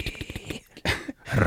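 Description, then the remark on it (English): A dog named Whiskey growls in a rough, rapidly pulsing rumble, followed by a couple of louder, noisier bursts, with no one talking. “Is that whore down there fucking growling? It's whiskey at the end of this bed. Where's that dog?”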